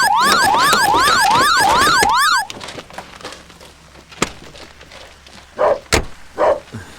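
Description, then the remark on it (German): A Rolls-Royce car alarm, set off by an attempted theft, wails loudly and sweeps rapidly up and down for about two seconds. It is then switched off and cuts out abruptly, leaving a quiet background with a few sharp clicks and thumps. “Moment, ich stemme die Alarmanlage ab.”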